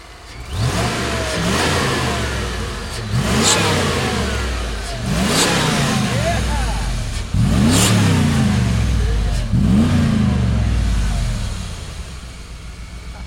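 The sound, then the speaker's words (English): The engine of a lowered, vintage 1980s–90s Ford pickup truck with twin I-beam suspension revs hard several times in a row, each rise in pitch followed by a drop back, loud, with a throaty rumble between the bursts. “Give me a little goose before you turn it off.”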